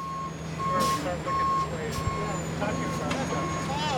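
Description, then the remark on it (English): A volunteer backs up a big delivery truck in a church parking lot, its steady high backup beeps repeating at an even pace over a low engine rumble, with faint voices and outdoor activity as others load supplies such as bottled water and food into the back. “In the church parking lot, a volunteer backs up a big delivery truck.”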